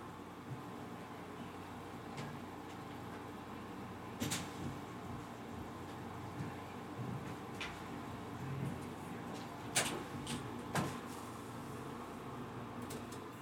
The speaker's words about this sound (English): Oop, gotta close the door. Watch, as soon as I close the door, that cat will be at it.